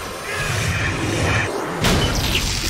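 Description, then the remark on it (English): A robot's power source is smashed, followed by a small, sharp, self-contained explosion bursting out over a steady rumbling crash of noise. No one speaks. “Grabbed its power source, or smashed its power source. Oh! Nice little self-contained explosion.”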